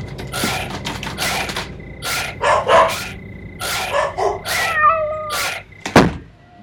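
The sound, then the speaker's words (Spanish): A kitten meows in a rapid series of short, high-pitched cries, fairly loud, ending with a sharp squeal, over a steady low hum with no talking. “¡Vamos, gatito!”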